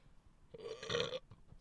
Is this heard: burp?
yes